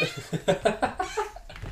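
A cat meows loudly and insistently, a rapid string of several short, harmonic yowls, rising and falling over under two seconds.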